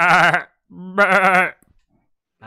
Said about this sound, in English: You will reach the back grotto in your dream, and that's where it will end, bringing you sharply back to reality with the baying of goats in the morning.